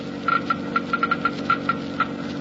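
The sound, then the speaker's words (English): A Geiger counter measuring engine wear rate in a test of new RPM motor oil clicks irregularly, about ten sharp ticks with a faint tonal blip, over a steady low mechanical hum. “You have just heard Geiger counters clicking off the scientific proof that new RPM motor oil is years ahead.”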